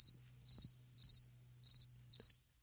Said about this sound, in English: Crickets once again.